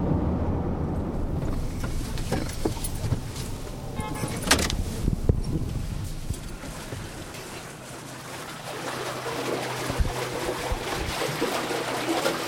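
Irrigation water being delivered to farm fields in California's Imperial Valley rushes and flows steadily, a continuous wash of noise with occasional gusty surges and a low underlying rumble, holding fairly even throughout.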